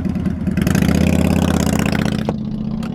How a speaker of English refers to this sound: I like your ride. I like your motorcycle. Yeah.